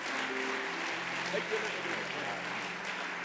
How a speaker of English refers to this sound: Let's continue to clap our hands unto the Lord and give him praise today.